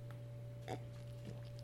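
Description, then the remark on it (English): A loud slurping sip of beer taken into the microphone, a short wet mouth sound followed by a softer second one, over a steady low electrical hum. “Oh, as I took a loud sip into the mic.”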